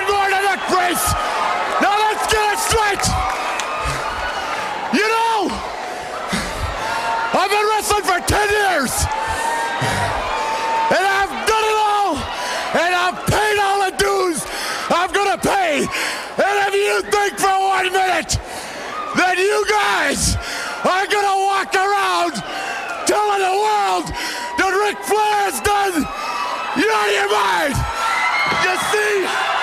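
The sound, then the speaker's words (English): A wrestling arena crowd cheers and yells loudly as Ric Flair, in a neck brace, appears with a bat; a steady roar broken by repeated rising, high-pitched whoops and shouts from many voices. “All right, and here is, listen to the crowd.”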